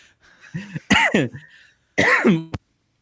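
A man coughs loudly and close to the microphone, several harsh, throaty bursts in two clusters separated by a short pause, with no talking.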